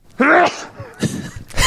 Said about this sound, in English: That's a pretty manly sneeze. It's a pretty manly sneeze.